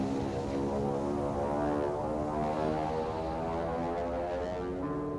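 propeller airplane flying

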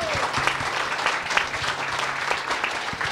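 audience applause

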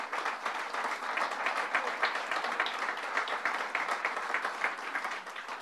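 audience round of applause

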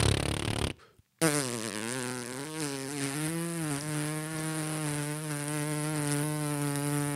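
fart sound effect

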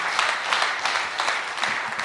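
audience applause

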